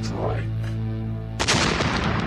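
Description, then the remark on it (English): A drone strike sound effect: a steady, low droning hum for over a second, then a sudden loud explosion whose broad, crackling roar rumbles on until the end. “So moving right along into the best, the greatest of Nerd Out Loud bits, we're going in for a drone strike.”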